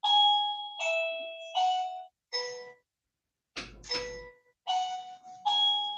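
A doorbell chimes repeatedly in quick succession, its bright, ringing two-tone notes sounding loud and alone, with short silent gaps between the rings.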